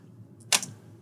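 A quick clatter of dice rolled onto a hard table: one sharp, bright click followed by a couple of softer rattles, over in about a second against a quiet background hum.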